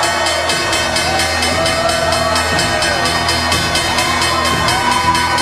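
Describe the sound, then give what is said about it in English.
A steady rapid ringing of the stock exchange opening bell at the big board sounds over a loud, dense crowd cheering and whooping as the exchange celebrates the Bill.com IPO, with the clamor continuing without pause throughout. “Let's get the opening bell here and the S&P 500”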